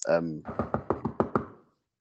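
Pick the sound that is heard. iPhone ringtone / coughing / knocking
knocking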